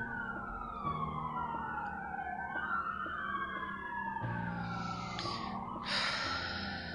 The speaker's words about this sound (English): That is very close. Holy shit. And we're gonna let the sirens disappear.